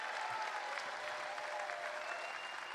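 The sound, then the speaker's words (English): An audience claps their hands together in steady, dense applause after a closing prayer, filling the space for the whole moment, many hands overlapping with no pauses and no one speaking. “Come on, give him a hand clap.”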